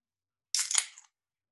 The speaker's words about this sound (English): That was a good clap.